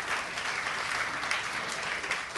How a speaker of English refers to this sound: Wasn't much of a clap. That was even worse.